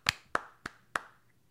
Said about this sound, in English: I'm clapping. I'm giving 2 claps.